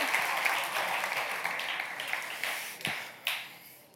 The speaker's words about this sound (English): So I'm going to turn it over to him for the message tonight. But as he comes, can we just again bless him by our applause and our love?